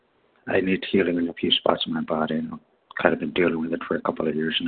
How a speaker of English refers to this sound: You're too close to the phone. You're muffled. back up and speak again.